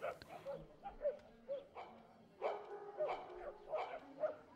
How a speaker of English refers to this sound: look at our dogs. They're having a whole conversation right now. They're still friends. Gus is telling her, I miss you. It wasn't me, I swear. Let's play and sniff butts. Come on.